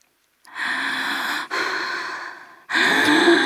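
Three long, loud, breathy exhalations and inhalations follow one another closely, like someone breathing heavily and noisily, with no talking.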